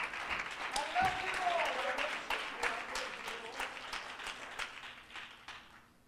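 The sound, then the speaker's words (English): A seated audience at a worship service claps their hands in praise to God in a dense, sustained burst of applause, with faint voices mixed in, gradually thinning out and fading over several seconds. “Give him a hand clap of praise as you're seated tonight.”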